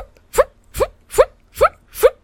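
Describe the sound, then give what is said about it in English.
A voice imitates the jumping noise made by the grunts in a show, with five quick, rising "wee" squeals, evenly spaced and fairly loud, each sliding upward in pitch with short gaps of quiet between them. “They go, wee, wee. There are two noises that happen when these guys jump.”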